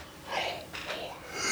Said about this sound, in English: Jeez, keep yawning. I'm putting myself to sleep.